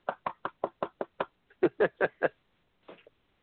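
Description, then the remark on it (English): Rapid knocking on a door: a quick run of seven even raps, a short pause, then five louder, heavier knocks, distinct with no talking. “I'm almost afraid to laugh at it because I'm afraid they might be knocking at my door.”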